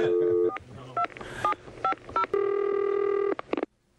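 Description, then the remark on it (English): A phone number is dialed to call a dog's owner: a quick series of short, bright keypad tones in an uneven rhythm, followed by a longer steady tone lasting about a second, then a brief final beep. “Well, I'm going to call and say that we found the dog and we want to bring it back to her now.”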